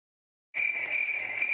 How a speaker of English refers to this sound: Is it time for crickets?